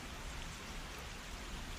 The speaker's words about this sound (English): Do we know what that element is? You're listening to the sound of it right now. It's rain.